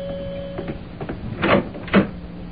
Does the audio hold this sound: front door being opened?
yes